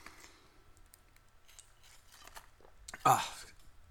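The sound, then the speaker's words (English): Someone takes a sip of a drink: soft, quiet mouth and swallowing noises, then a brief, sharper, louder clunk near the end. “hold on, I need to take a sip.”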